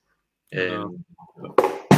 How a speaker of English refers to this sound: My cat just knocked down. You just knocked down Walter Smith's autograph on the anniversary of his death, you bad cat.